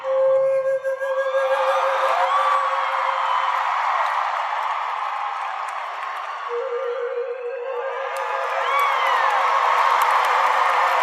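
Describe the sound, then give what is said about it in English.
A huge arena crowd roars, cheers and whoops without pause, loudly applauding a flute performance. A held note from a crystal flute rings over the din at the start and again later. “Do you think, Elena, that is the loudest applause that has ever happened for a flute performance?”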